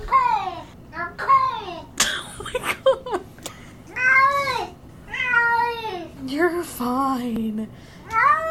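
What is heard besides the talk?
cat meowing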